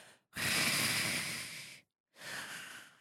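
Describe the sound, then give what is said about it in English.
Heavy, rasping breathing: one long drawn-out breath followed by a brief pause and a second, shorter breath, loud and airy with no talking. “Or the one with the breathing, the heavy breathing.”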